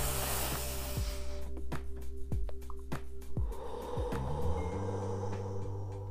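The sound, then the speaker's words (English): A deep, slow relaxation breath drawn in and pushed out, airy and rushing, over a steady low electrical hum with a few faint clicks and no talking. “So learn some breathing techniques, some relaxation techniques.”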